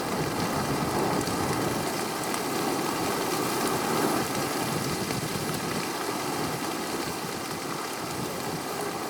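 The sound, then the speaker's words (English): Steady, heavy rain hisses and patters continuously, a dense wash of drops falling at an even loudness throughout, with no voices. “Stuck in the rain?”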